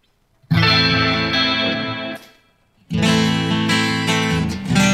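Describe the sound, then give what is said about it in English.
A guitar played through an amplifier's acoustic setting rings out in two loud, sustained strummed chords with a shimmering, chorus-like effect, separated by a brief pause, with no talking. “I think that's a nice acoustic sound.”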